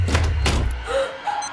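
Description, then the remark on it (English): Two quick, heavy clunks of car door locks engaging, solid, followed by a couple of short electronic tones over a low background rumble. “All doors locked.”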